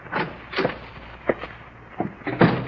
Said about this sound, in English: I opened the door and walked in.